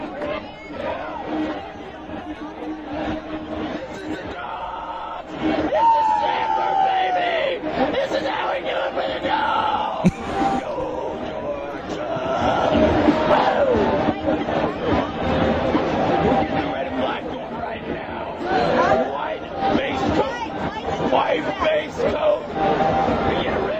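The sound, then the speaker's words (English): A crazed Georgia Bulldogs football fan yells and shouts wildly and continuously over a noisy, chattering crowd, his strained voice rising and falling with bursts of frantic cheering throughout. “Craziest Georgia Bulldog fan ever. This guy is nuts.”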